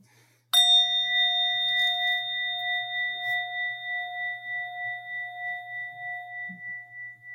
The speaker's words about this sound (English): But what I'll do is just ring this bell and invite us together in a bit of reflection.